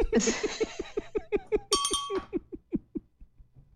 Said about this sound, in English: Did I get a half bell there? What did I say? Broad. It's a half bell. Trying to sneak it in.